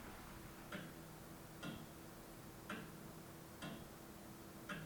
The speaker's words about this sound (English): clock says one word over and over again, and that is eternity, eternity, eternity. And he also says if this clock could speak, it would be able to tell a lot of stories. Well, let's listen again for a couple of seconds at least to what it's saying.